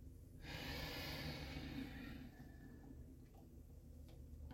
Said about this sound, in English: Breathe it in. Breathe it into the knees and the calves and the heart and the fingertips. And out, out, out, out.